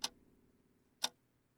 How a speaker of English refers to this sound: We can all hear the clock downstairs, right? You can all hear it?